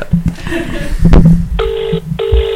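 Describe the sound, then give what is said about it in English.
A ringback tone of an outgoing phone call purrs twice in steady pulses, each burst roughly half a second long, following a sharp tap and some background murmuring and rustling at the start. “Let's ring Danielle. We'll ask her about awkward conversations. See if she answers.”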